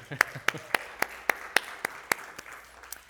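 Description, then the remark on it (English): About ten sharp hand claps in a steady, even rhythm, like a brief bit of applause from a small group at a church service on Father's Day, fading out after a few seconds. “I think we deserve a quick round of applause.”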